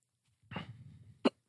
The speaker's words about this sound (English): I got the hiccups still. Yeah. We all noticed.